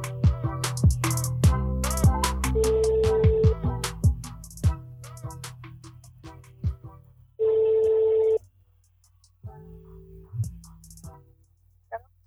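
A phone line rings out with a few steady electronic ringing tones in separate bursts, heard over light plucked background music with clicks and taps, and no one speaking.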